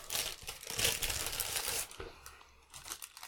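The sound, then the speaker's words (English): A Taco Bell Crunchwrap wrapper being unwrapped: loud, dense crinkling and crackling for about two seconds, then softer, scattered rustles and a few sharper crinkles as the paper settles. “I got another Crunchwrap.”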